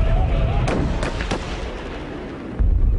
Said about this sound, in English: then the police started pushing us back to the intersection of Mission and Stewart Streets, just off the waterfront, when the police car arrived and shots were fired.